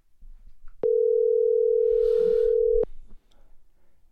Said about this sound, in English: We're going to give him a buzz on the old telephone, see if he answers.